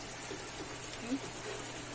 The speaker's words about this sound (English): Cooked in its own little fat. It just doesn't even have a lot of fat. Springs its own water. Hear that water? Yeah, boy.